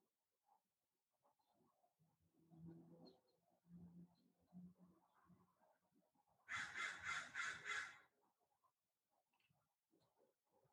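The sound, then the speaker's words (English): A crow gives a quick run of four or five harsh, rasping caws, loud, standing out against soft, low outdoor background noise before and after. “In other words, if you hear a bird cawing, forget that it's a bird.”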